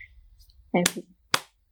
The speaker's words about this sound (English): And then check your palms and see if they're about the same. They are. Yeah. They're both tingling because I just clapped.